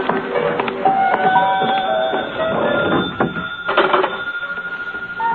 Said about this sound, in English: Telephone's ringing. Must be my call.